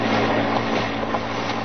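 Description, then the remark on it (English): A car approaching outside a garage in Battersea, London: a steady, rumbling engine drone with a low hum underneath, holding an even loudness throughout the short stretch, with no voices. “Car coming this way, sir.”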